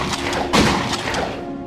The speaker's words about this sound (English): Which is why I was still awake to hear the gunshot. At first I thought it was thunder, but I realized it wasn't raining. And then came the second and the third.